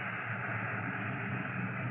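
A steady, unbroken hiss of air escaping from a tire valve screwed open on a police squad car, constant in loudness, with no talking over it.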